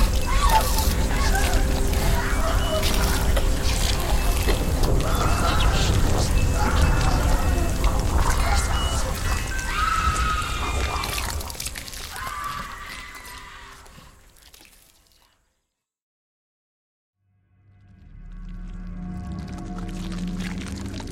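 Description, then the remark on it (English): Marsh ambience by tranquil waters lined with swaying reeds and marsh flowers, with water birds honking and calling over a steady wash of water and soft wind, fading away into silence before a low, rumbling drone rises at the end. “down towards the tranquil waters lined with swaying reeds and delicate marsh flowers, where the melodies of the birds and the soft murmur of the wind enveloped me.”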